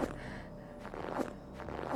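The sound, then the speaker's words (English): Several soft, muffled footsteps of a white blurry figure walking away at an unhurried, steady pace, with no voices, just a low background hush between the steps. “You see the blurry shape, the white blurry shape, begin to walk away from your broken form.”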